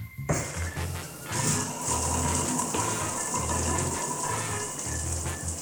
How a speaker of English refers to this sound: Law, permission for shower access. Daily ration, please. Permission granted. Your 3-minute water ration begins now.